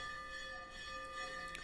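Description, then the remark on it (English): The ringing hum of a bell at a temple of the goddess Lalitambika lingers steadily, its layered metallic tones sustained without a fresh strike, fairly quiet, with no voices present. “That's the temple bell at her temple.”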